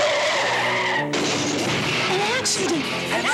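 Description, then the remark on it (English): A car with a child inside skids loudly in an accident, tires screeching in a long, wavering squeal that rises and falls over about three seconds, harsh with a noisy roar underneath. “An accident. The humans had an accident. There was a child in the car.”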